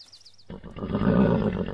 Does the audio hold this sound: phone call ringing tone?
no